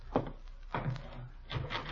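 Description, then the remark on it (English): A door is opened as someone is at the door, with three dull wooden thuds and rattles spaced about half a second apart, fairly quiet, with no voices. “Somebody at the door, Gildy.”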